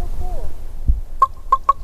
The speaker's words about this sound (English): With the odd interruption along the way, like that crow. And yes, that is a crow.